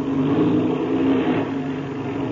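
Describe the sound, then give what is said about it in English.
A loud, steady drone of a small airplane engine as the plane taxis across the field and is given a burst of power, its low throbbing hum briefly swelling for a moment before settling back to an even roar, with no voices. “Yes, since I'll have to give her a burst or two, all right?”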